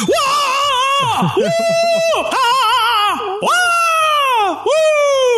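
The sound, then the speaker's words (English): Men scream loudly in delight, a run of long, close, full-voiced yells that swoop up and down in pitch, several bursts back to back with barely a pause between them. “And now here are the two guys who are ready to scream so loud in delight to talk about this episode of Game of Thrones with you.”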